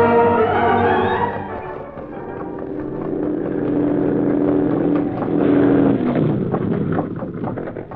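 A car engine rumbles steadily, its pitch shifting and its noise swelling louder toward the middle as though the vehicle draws closer, with no voices over it.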